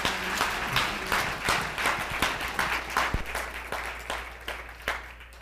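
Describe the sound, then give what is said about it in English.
An audience claps steadily for several seconds, a dense patter of many hands with sharper individual claps standing out, fairly loud and fading slightly toward the end, with no talking. “You can clap for. Thank you.”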